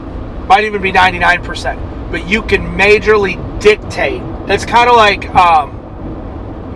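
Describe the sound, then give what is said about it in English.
A steady, low road rumble fills the cabin of a large Yukon Denali SUV as it drives, a continuous hum running beneath a man talking. “It's kind of like this car that I'm in, this big old Yukon Denali, right?”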